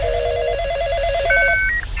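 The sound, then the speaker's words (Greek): A telephone ringback tone on an outgoing call: steady electronic tones, first a low two-tone pair, then a higher pair, clear and continuous over a faint background hum, with no talking. “Πήρα τηλέφωνο.”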